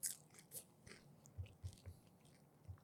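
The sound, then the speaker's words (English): Crunchy chewing of a whiskey-dipped cricket, with sharp crackly bites at the start and then a steady rhythm of soft, muffled chews. Nobody speaks. “That takes the weird crunch out of it that I didn't like at the beginning.”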